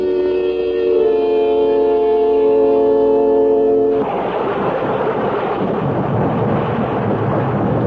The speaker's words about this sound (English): When the rain stops, we can go out there.